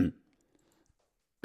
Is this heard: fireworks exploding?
no